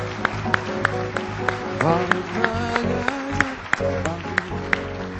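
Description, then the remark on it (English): A crowd claps hands for the Lord in the morning in a steady rhythm, sharp regular beats running throughout, over sustained musical tones and some indistinct voices. “Can you give the Lord a hand clap this morning?”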